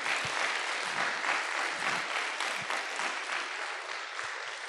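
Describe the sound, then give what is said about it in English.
A large audience at a school event claps steadily for several seconds for the performers. It is a dense, even wash of applause, with a few sharper individual claps standing out. “Please give everyone who performed today another round of applause.”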